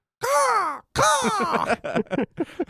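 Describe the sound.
Someone imitates seagull calls with their voice: two long, loud, wavering squawks, followed by a quick run of shorter, choppy cries.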